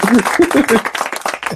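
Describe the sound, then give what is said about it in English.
Applause for a guest musician: a brief burst of hands clapping, a dense, crackling patter that fades after about a second and a half, with voices calling out over the first half. “This man, applause, goddammit.”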